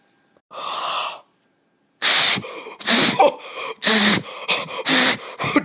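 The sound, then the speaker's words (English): Loud, rough burps blasted into a microphone: one on its own, then a pause and a rapid string of about five more, harsh and gurgling with breathy noise. No talking. “Stop burping into the lead.”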